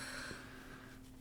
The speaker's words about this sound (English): I know. I'm snotting and coughing. This podcast should be great. It's really great. I mean, because I'm looking down, and as I'm looking down, my nose starts to run.